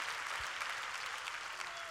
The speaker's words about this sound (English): Come on, clap your hands and praise God for another chance.